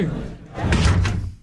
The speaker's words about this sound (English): Oh, no. The door seems to be closing. No.